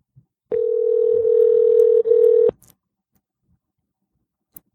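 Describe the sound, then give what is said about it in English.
A single steady electronic ringback tone of about two seconds sounds clearly over the line on an outgoing call from the Animal Talk show, then cuts off, leaving near silence with a faint click afterward. “Ringing.”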